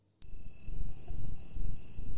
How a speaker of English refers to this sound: Crickets.